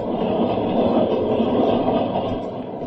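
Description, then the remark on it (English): A train races along open track at 60 miles an hour at night, a loud, steady rumble and rattle of wheels and cars that stays constant throughout, easing off only slightly at the end. “But first, I want you to be my guest on a little train ride.”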